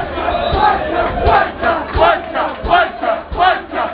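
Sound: football fans shouting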